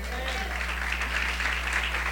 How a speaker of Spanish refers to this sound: Aplauso de golf, ¿verdad?